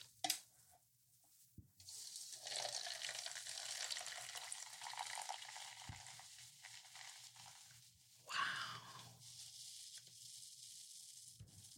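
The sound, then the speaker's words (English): A brief snap, then a steady, bright fizzing hiss of a carbonated drink that carries on for several seconds, with a sudden louder surge of bubbling near the end. “That fizz ASMR.”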